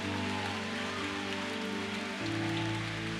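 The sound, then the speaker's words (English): An audience claps for the Lord in a dense, steady wash of applause while sustained low chords hold underneath, shifting to a new chord partway through. “If you believe that, give the Lord a clap and a shout.”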